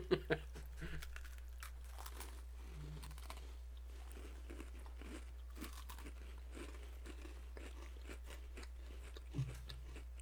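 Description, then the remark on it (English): Crisp crunching of an Oreo cookie being bitten and chewed, with sharp bites at the start and near the end and steady crackly chewing in between, no talking. “It tastes pretty normal, but it's really crunchy. It's a really crunchy Oreo.”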